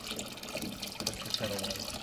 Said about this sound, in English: I use filtered water to make the bread, so then I heat some in a kettle and mix it with the cold and see what we have here.